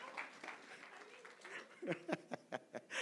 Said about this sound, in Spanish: No, un aplauso para los hermanos que cantaron.